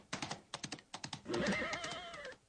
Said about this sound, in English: In case you didn't know, it was a horse.